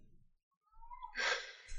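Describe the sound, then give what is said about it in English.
A kitten gives a short meow, starting as a thin, high whine and breaking into a louder, scratchy squeal before trailing off, with no one talking. “Is your door open? No. Okay. You're a baby cat.”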